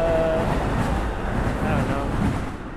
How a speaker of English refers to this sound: I wonder where that train is going. I guess you can never know. It said Midwest.